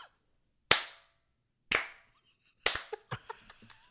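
Three sharp, separate claps ring out at a slow, deliberate pace, the last followed by a quick flurry of lighter smacks that fade out; close and clear, with no talking.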